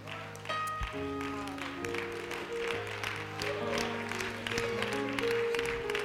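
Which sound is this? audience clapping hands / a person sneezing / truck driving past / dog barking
audience clapping hands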